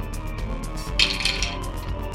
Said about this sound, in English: It's a shitload of dice.